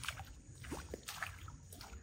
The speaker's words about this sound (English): I'm going to kind of walk through this tiny little puddle here.